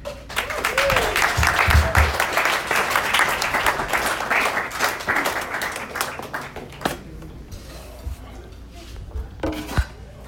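A comedy show audience in Grover Beach breaks into dense, steady applause for a comedian, a loud crackling wash of many hands clapping that thins out after a few seconds into scattered claps and quieter crowd murmur.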